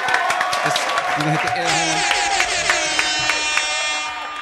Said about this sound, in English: Clap it up one time.